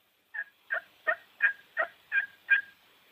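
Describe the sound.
A series of seven evenly spaced turkey hen yelps made on the Evelyn slate, a bigger slate call, sharp and raspy with a steady rhythm, fairly loud, with no talking.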